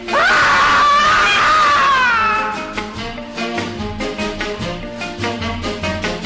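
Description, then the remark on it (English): A loud, drawn-out scream rises and wavers for a few seconds, then gives way to a bouncy, rhythmic band tune with bright repeated notes, from a 1959 novelty song in which people scream as a man dressed as a mummy walks up to them. “And the premise of that is a guy is a mummy and he walks up to people and they scream and he's just looking for friends and he makes friends with a beatnik who's not scared.”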